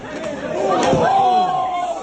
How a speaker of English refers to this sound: He was out before he hit the ground, but when he hit the ground, that thud was louder. Yeah, yeah. That's what made me go, he's dead.